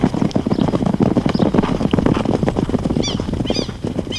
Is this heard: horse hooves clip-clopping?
yes